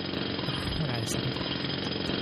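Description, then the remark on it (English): A jackhammer roars steadily outside throughout, a dense, loud mechanical rattle with a fast, even hammering texture that never lets up. “How much more to experience the presence of God if you're using a jackhammer?”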